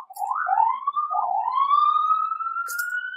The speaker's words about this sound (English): It's another ambulance.